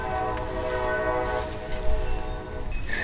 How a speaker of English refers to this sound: Folks, you're hearing moving trains in the background.